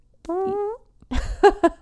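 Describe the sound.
Someone makes fart noises with their mouth: a steady, buzzy, slightly falling blurt, then after a short pause a louder burst of wet, sputtering raspberry pops.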